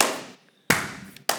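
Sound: slow hand clapping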